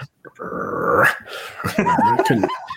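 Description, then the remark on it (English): A person imitates a timid dog: a low, drawn-out growl gives way to a few soft, hesitant yips and whimpery barks, timid rather than full-throated. “You were going to actually bark, but it's sort of like a timid dog.”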